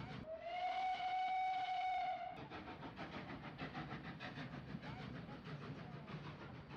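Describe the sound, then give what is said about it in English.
A steam locomotive on a heritage railway blows its whistle in a long, steady harmonic tone for about two seconds, then gives way to the rhythmic chuffing and clatter of the engine working. “all these retired blokes who devote their weekends to running heritage railways, that's it. That is the strategic steam reserve.”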